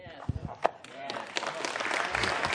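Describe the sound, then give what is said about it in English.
A burst of audience applause swells up after a brief moment of voices, becoming a dense, steady patter of many hands clapping that grows louder and holds to the end. “I just want to applaud this man for sharing the truth in love.”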